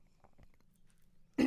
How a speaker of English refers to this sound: I clear my throat there because I have to in this setting.